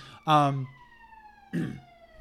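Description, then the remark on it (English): An ambulance siren wails past, its steady tones sliding downward in pitch as it recedes, heard moderately loud beneath brief bursts of people talking. “It's the ambulance.”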